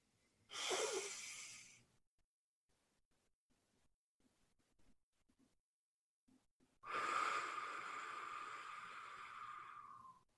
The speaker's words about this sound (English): you're inhaling through your mouth, through your nose, 3 seconds or 4 seconds. You're holding that breath in for 3 or 4 seconds, then you're breathing out through your mouth 3 or 4 seconds. And it might look something as simple as this.